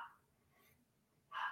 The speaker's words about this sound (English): Alright, am I barking like a motherfucker?